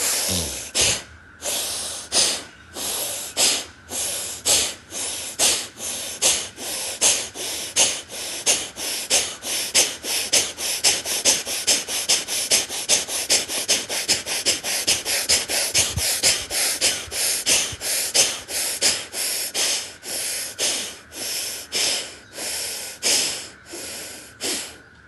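A long run of forceful, rhythmic inhales and exhales in a breathing practice, shoulders lifted on each inhale and lowered on each exhale, loud and repeating steadily at a brisk pace with harsh, airy rushes of breath and no talking.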